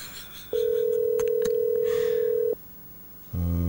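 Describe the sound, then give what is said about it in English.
A phone call to a 25-year-old daughter ringing on the caller's end: one steady, two-second electronic ring tone, a short pause, then another tone starting just before the end. No one answers and no one speaks. “See if she's going to answer.”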